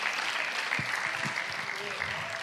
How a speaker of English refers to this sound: Now clap those hands and give God a mighty shout of praise in this place. Hallelujah.